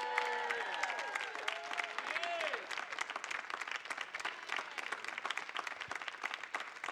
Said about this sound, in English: Put your hands together, y'all, and give it up